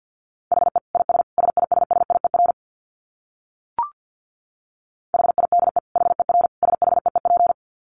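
Fast Morse code at 50 wpm: a steady mid-pitched tone keyed in rapid dits and dahs, sounding in two bursts separated by a pause with one brief blip.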